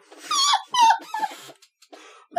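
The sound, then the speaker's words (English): A dog, Lesser Dog, whines and growls in a few short bursts: high wavering whimpers with rougher, throaty rumbles in between, then a brief pause before one more whine starts. “That whole, like, 5-minute segment where you're just petting the dog and his giraffe neck goes into orbit”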